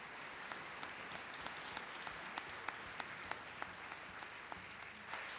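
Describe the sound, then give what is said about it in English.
An audience at a church worship service claps to thank a couple for sharing their experience, a dense, even patter of many hands with sharp individual claps popping out, holding a consistent level for several seconds with no voices. “Can we give a round of applause thanking them for”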